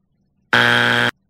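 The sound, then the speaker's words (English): A single harsh electronic buzzer blares for just over half a second, loud and steady with a raspy, harmonic-rich tone, then cuts off abruptly into near silence. “Ah, you can't buzz that.”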